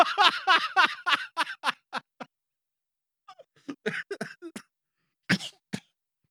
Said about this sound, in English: Oh, I'm coughing up a lung over here.